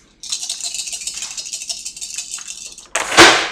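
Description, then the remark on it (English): Dice for a tabletop game's hunting-skill roll rattle steadily for nearly three seconds, a dense, bright clicking, then spill out onto a table in one louder, sharp clatter at the end. No one speaks. “Where we'll do three rolls, your hunting skill versus his.”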